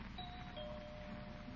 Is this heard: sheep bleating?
no